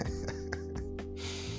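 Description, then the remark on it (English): A series of short, wet nasal sniffs from a person with a runny nose, in quick rhythm, about five close together, followed by one longer drawn-in snuffle, with no talking. “Now, forgive me if I keep on sniffing while doing the podcast. I have a runny nose.”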